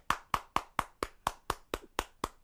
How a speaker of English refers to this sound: Yep, I am applauding her.